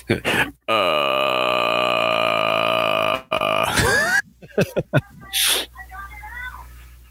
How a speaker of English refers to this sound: And even more so now because, like, Jiris, this thing lives in a pond. Mm-hmm. Sounds like it's burping.